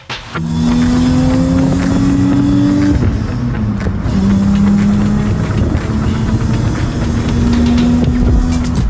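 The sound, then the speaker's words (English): A car engine revs loudly and steadily, its pitch climbing, dropping briefly around the midpoint, then climbing again as it winds up through the gears, with no voices. The car sounds are courtesy of OBD1 Kenobi. “No, those car sounds were courtesy of OBD1 Kenobi.”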